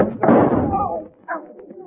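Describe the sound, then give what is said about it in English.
A single loud gunshot cracks out and rings away over about a second, followed by a shorter, softer thump with a faint muffled voice; the bullet grazes and burns a man's hand. “That bullet just burnt your hand,”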